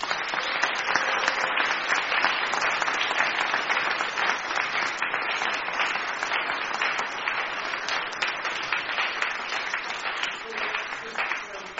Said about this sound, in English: So shall we just give him and God a round of applause?